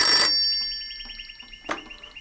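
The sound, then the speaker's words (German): A shrill telephone bell rings in a living room, a rapid trilling burst that keeps rattling in quick pulses, with a sharp click partway through and no voices. “Abrupt riss sie das schrille Klingeln des Telefons aus ihren Gedanken.”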